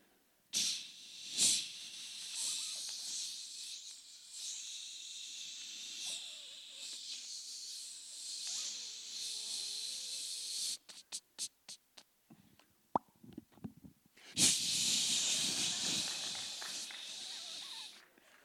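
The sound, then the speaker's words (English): In a bathroom, a long, steady hiss of hairspray spraying from a full can, then a string of sharp clicks and taps, followed by a second strong burst of hissing spray. No one speaks. “My wife will go into the bathroom, and she'll take the top off of a full can of hairspray, and she'll begin to spray.”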